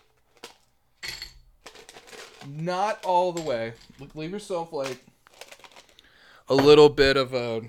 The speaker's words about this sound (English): All right, so we're going to go ahead now and add the rest of our ice. So we've got our whiskey and our syrup in the glass. We're going to go ahead. We're going to fill that pint glass.